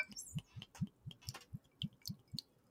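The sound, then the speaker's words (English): Elijah Craig Small Batch 1789 Kentucky Straight Bourbon glugs out of a bottle into a glass with ice in a steady run of about ten low, muffled pulses, with faint bright splashes and trickles above them. Fairly quiet, with no talking. “That sounded like a big pour.”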